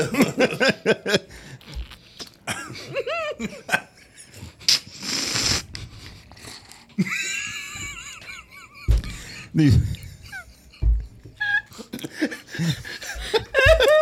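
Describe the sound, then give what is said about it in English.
Loud, wet slurping of a boozy drink of 13% ABV in a few gurgling bursts, one long noisy pull standing out, with scattered voices and laughter around it. “That slurping sound was so funny.”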